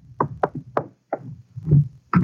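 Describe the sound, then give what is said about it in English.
An office door, Chief Backstrand's door off the squad room, opens: a quick series of sharp wooden knocks and latch clicks, a low rumbling shuffle, then a final heavier thud, with no one speaking. “We just got back from Santa Ana, where we'd been questioning a red-headed suspect, and we'd flopped in the squad room when Chief Backstrand's door opened.”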